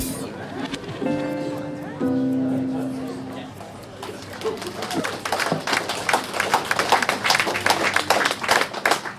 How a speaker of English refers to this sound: Like last week's episode, I'll hand over to my live recorded self to introduce the artists so that you can hear all the lovely applause that welcomed them.